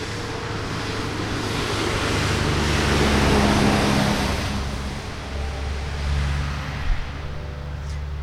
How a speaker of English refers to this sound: It's funny through the headphones, the cars sound a little bit like aeroplanes.